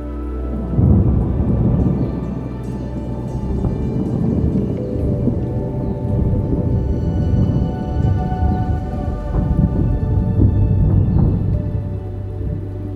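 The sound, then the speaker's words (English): Deep thunder rumbles on and off, drawing a little closer with flashes of lightning, over a steady wash of rain pouring rhythmically, the low rolls swelling loud and close in waves. No voices, just the continuous downpour beneath. “Rumbling thunder draws a little closer, reverberating with the beautiful flashes of light.”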